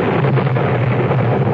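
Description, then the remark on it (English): Thunder rolls in a loud, steady rumble, heavy in the low end with a broad roaring wash above it, lasting the whole moment without a break and with no voices. “Thunder God never speak at this time before.”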